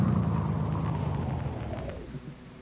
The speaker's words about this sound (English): Hey, look, here comes a car now.